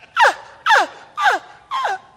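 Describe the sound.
A voice imitates a bull elk call: four short, strained squeals, each sliding downward in pitch, repeated at a steady pace with brief pauses between them and no other talking.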